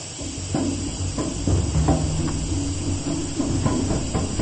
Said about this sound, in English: That's a seal. He's venting the ship.